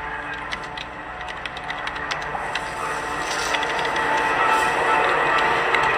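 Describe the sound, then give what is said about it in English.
Rapid, irregular keyboard clicking, sharp little taps tumbling over one another above a steady hiss, growing slightly louder toward the end, with no voices. “Making keyboard clicking sounds.”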